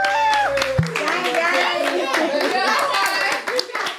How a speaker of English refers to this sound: Hey, it's been real today, man. It's been real. Everybody clap it up. Clap it up.